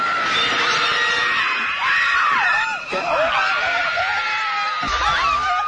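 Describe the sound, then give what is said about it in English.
Loud, sustained shrieking screams fill the whole stretch, several voices wailing and warbling in a dramatic, horror-film style, with brief breaks and a bit of laughter-like chatter mixed in. “You are now officially a Scream Queen.”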